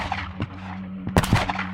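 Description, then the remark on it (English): A few sharp, distant gunshot cracks ring out irregularly, with a tight pair near the end, over a steady low hum and no voices. “Gunfire suddenly cracks in the distance.”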